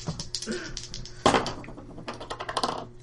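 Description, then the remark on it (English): Dice clatter across a tabletop in a rapid string of small clicks, with a sharper burst of rattling partway through before the tumbling settles into lighter taps. “Why don't you roll the dice and we'll find out.”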